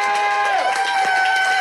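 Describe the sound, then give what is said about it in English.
Audience applause for a guest at the end of the live show Off the Reels: a loud, steady burst of crowd noise with cheering, clapping and whistles running together for under two seconds, with shrill sustained tones carried over a dense wash of voices. “Round of applause for our guest,”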